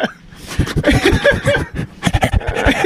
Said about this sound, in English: he keeps breathing into the microphone like he's Friday the 13th, like he's Jason